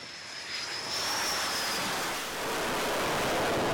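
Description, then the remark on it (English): Loud, continuous jet engine roar fills the air, a broad rushing blast with a high whining tone sliding across it, steady, with no voices: combat jets and helicopters (FA-18 Hornets, MH-60 Seahawks) landing and taking off on the flight deck of the US aircraft carrier Nimitz in the South China Sea, in drizzle. “Dozens of combat planes and helicopters roaring on and off the flight deck of U.S. aircraft carrier Nimitz.”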